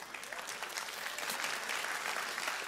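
An audience applauding steadily, a dense wash of many hands clapping at an even, fairly loud level throughout, with no voices standing out.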